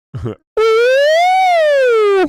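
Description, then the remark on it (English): A brief vocal sound, then a voice imitates a police siren with one loud, sustained wail that rises slowly in pitch and falls back before cutting off. “You hear the sirens, bro.”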